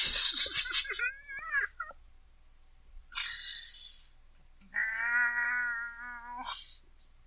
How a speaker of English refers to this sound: the cat had kittens.